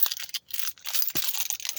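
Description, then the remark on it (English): A bunch of work keys jingles and clinks, shaken in a few quick bursts with brief pauses between them. The metallic rattling is bright and fairly loud, with no one talking. “This is all my work keys, guys.”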